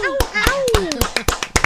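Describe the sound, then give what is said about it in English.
A quick run of about nine sharp hand claps, fairly loud, in a slightly uneven rhythm, with a young voice talking and exclaiming over them. “showing appreciation by smacking your hands together to make a noise”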